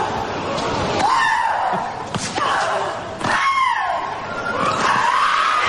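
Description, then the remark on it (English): Loud, drawn-out vocal shrieks from tennis player Maria Sharapova, three main bursts with falling pitch, each paired with a sharp ball strike, over steady background noise. “When she hits the ball, actually, I don't know if you guys know this, one of her grunts was measured at 101.2 decibels, which is louder than a lawnmower.”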